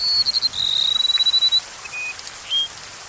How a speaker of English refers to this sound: And a rufous-winged sparrow voices its gentle melody.